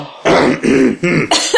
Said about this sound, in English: All right. Clear my throat. Let's see.